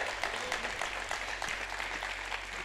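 An audience claps their hands together, a dense, steady patter of many overlapping claps that holds at an even level throughout, with a low hum running underneath.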